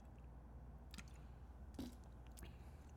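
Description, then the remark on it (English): A few soft, wet slurping sips from a drink, spaced about a second apart, quiet, with a faint background hum and no talking. “Sip. Another sip.”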